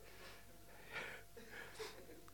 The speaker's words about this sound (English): Don't give me a tissue. It will splatter all over my face. There's nothing worse than having a beard and someone gives you a tissue. And with a prickly beard, you just you wear the tissue as well. I'll just have to sniff for a minute, sorry.